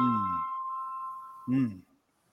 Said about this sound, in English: You want to answer your phone, man? Love is your phone answering. Your phone ringing at 9:55. Love is your phone ringing. Your phone ringing at 9:55.